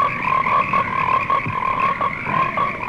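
A dense chorus of frogs croaks steadily, overlapping calls forming a continuous, fairly loud drone with rhythmic pulses recurring about every half second, and no voices present.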